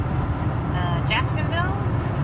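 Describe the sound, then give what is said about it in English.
A steady, loud low-pitched rumble fills the inside of a moving car carrying three people, constant throughout, with a voice speaking briefly over it midway. “So we're now, all three of us are in the car. We've been driving for a little while.”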